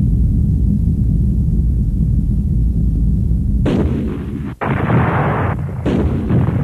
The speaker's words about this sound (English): Meteorite storm.